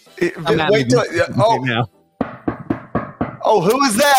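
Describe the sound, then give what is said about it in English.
A quick run of about five sharp knocks on a front door, fairly loud, with people talking just before and right after. “Who's that at your front door?”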